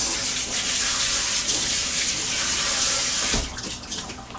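Tap water runs steadily in a broad hiss while a thick, good-quality plastic ice cube tray with a cover is washed under it, then the flow cuts off with a soft knock, leaving faint dripping and rattling.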